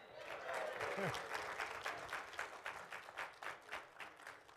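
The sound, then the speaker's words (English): An audience at Aldersgate United Methodist Church breaks into loud, dense applause that settles into a steady rhythmic clapping toward the end, with a brief voice rising over it early on. “He'll tell you why they're clapping later.”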